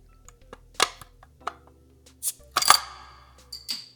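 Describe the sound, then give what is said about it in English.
A bottle of Cherokee Red Ale from Smoky Mountain Brewery, not a twist-off, is pried open with a bottle opener with a sharp metallic pop, followed by the metal cap clattering and bouncing on a hard floor in several bright, ringing clicks. “And we heard it hit the floor.”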